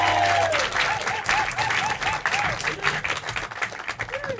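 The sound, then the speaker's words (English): A live audience applauds steadily, a dense wash of many hands clapping at once, loud and close, with some murmuring voices and a brief whistle-like tone drifting over the top. “And thank you for clapping.”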